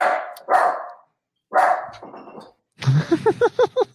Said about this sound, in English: The dog likes it. We have a winner. God, Jeff has got quite a bark, doesn't he?